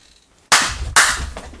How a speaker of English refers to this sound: Let's see if clap on, clap off works for him. Nope. never does.